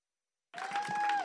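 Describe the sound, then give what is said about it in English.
After a brief silence, an audience bursts into loud applause and cheering on a count of three to thank God, with a sustained whoop rising above the dense clapping. “On the count of three, we're going to clap, and we're going to holler, and we're going to thank God for the faithfulness of God.”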